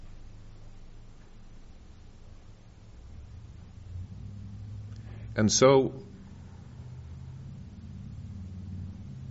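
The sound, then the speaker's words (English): A car pulls away from a parking lot outside, its engine rumbling low and then swelling in one short, loud rev before settling back into a steady drone beneath a man's speech. “hope that's not one of your cars leaving the parking lot.”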